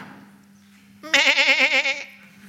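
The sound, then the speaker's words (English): A single wavering lamb bleat lasts about a second, loud and high with a quavering tremble, over a steady low hum and a quiet background. “A lamb looking as if it had been slain.”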